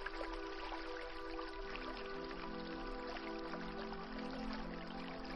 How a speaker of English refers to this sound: The water is sacred and comes from a spring above on the path.